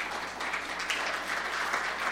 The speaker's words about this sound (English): Yeah, if you guys want to clap for...